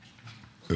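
A short, loud, guttural belch erupts near the end after a quiet, murmuring lead-in, low and throaty with a rough, grunting texture.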